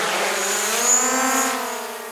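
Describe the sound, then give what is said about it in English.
A small backpack-sized drone hovering over the jungle near the Gulf of Fonseca in southern El Salvador gives off a steady, high, whiny buzz rich in layered tones, its pitch bending slightly as it swells and then tapers off a little at the end, with no talking. “It buzzes like a giant mosquito, then zips off.”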